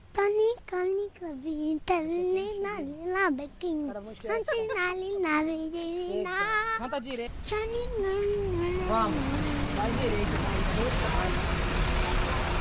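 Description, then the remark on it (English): A child's high voice chatters loudly over a low rumble, then gives way to a dense, steady wash of traffic and engine noise at the central bus station in Rio, with vehicles idling and passing. “We're at the central bus station in Rio.”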